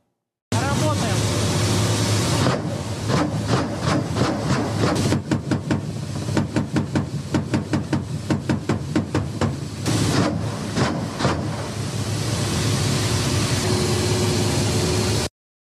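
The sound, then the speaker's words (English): A Russian attack helicopter engaging targets in combat in Ukraine roars loudly, its steady engine noise broken by long runs of rapid, rhythmic bursts of fire through the middle before settling back to a constant drone. “This is a Russian attack helicopter engaging targets in Ukraine.”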